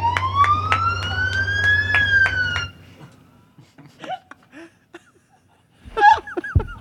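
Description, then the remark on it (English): An LAPD police siren wails loudly for about three seconds, rising in pitch over a low rumble, then cuts off abruptly, followed by scattered chuckles and laughter. “Our siren, when you hear this siren, it says, you're going to get some hugs from the LAPD.”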